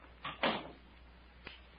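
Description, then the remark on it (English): A stateroom door swings shut with a soft scrape and a solid, mid-pitched thud, followed about a second later by a faint latch click. No one speaks. “Close the door, Captain.”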